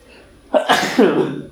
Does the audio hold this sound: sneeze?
yes